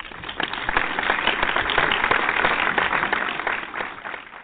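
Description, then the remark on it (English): A burst of applause at Gonzo After Dark Radio for the announcement of its new show Monday Night Quarterback, many hands clapping in a dense, steady crackle that holds strong for several seconds before tapering slightly at the end. “So let's give that a round of applause.”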